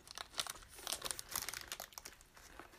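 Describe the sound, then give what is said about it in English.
Crisp crinkling of a candy wrapper in irregular bursts of crackle and rustle as candy is being eaten, with no talking. “Let's stop eating. They're gonna get all the ASMR.”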